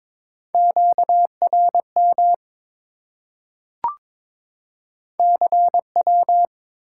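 A clear, steady Morse code tone keys out a quick run of dots and dashes spelling 'CW' at 22 words per minute, pauses for a single sharp click, then repeats the same brisk pattern. No voices.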